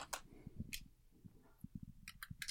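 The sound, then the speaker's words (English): About 30 pounds in coins dropping back into a bowl in a quick, irregular run of bright metallic clinks and taps, fairly loud, with a few sharper chimes toward the end. “Hold on, I'm going to drop all these back in 30 quid, pardon me. Bowl, and it's going to be absolutely terrible audio.”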